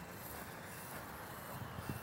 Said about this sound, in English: Train in the background. There's a train that runs on the backside of hole 17 and hole 1. It's quite loud if you're standing next to it.